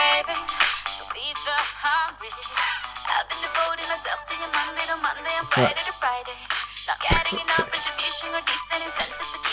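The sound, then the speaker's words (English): A pop song with a sung vocal plays continuously through a small phone speaker, thin and fairly loud, with a steady beat and a few brief percussive hits along the way. “It's … by ….”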